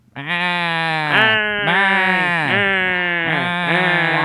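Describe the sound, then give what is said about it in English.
A human voice does an impression of Gilbert Godfrey mixed with a sheep, letting out a continuous string of loud, nasal, quavering bleats for several seconds with little pause between them. “It's Gilbert Godfrey and a sheep mixed together.”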